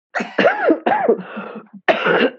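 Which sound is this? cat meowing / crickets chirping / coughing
coughing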